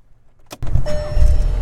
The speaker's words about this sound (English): I turned on my car. I don't know. I just want to see if it would pick up.